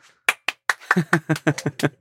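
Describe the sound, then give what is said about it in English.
Hands clap sharply, three spaced claps that quicken into a brisk run of about seven more, each a crisp, bright smack. “Clap your hands.”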